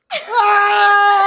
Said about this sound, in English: Everyone screams.